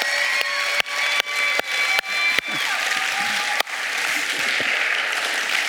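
An audience at the Lifehouse church applauds steadily for about six seconds as a pastor comes up onto the stage, a dense, even wash of clapping with a few sharper bursts and faint high tones that may be cheers or whistles.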